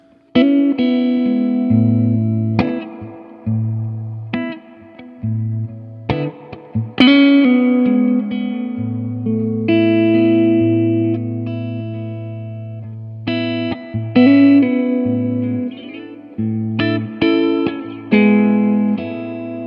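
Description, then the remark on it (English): An electric guitar plays a melodic lick of plucked, sustained notes through a large arena or concert reverb setting, with slightly driven tone and repeated phrases, loud with no talking. “And I feel like playing through this reverb setting, or the concert versus the arena, your initial sound is a lot more focused.”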